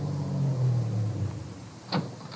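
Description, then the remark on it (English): A car engine hums low and steady as the car is slowly started away from the curb, its pitch gliding down as it pulls away, followed by a brief sharp click or clunk near the end. “I started my car away from the curb slowly, keeping him in sight.”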